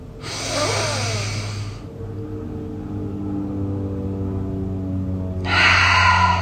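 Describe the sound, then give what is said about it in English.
Two deep, airy exhales through an open mouth during a guided deep-breathing exercise before a tarot card reading, the second following a pause of a few seconds, with a steady low droning hum of a plane flying overhead running underneath throughout. No one speaks. “Open mouth. Exhale. Again. One more breath.”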